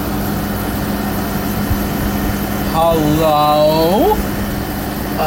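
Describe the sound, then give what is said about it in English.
A malfunctioning air conditioner drones steadily, a loud, constant low hum with a hiss over it. Partway through, a voice calls out once over the noise. “What is wrong with my air conditioner?”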